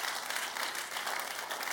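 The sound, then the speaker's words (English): A crowd applauds in a steady, dense wash of many hands clapping at once, holding an even loudness without pause and with no voices rising above it. “You see, when he came, you can clap.”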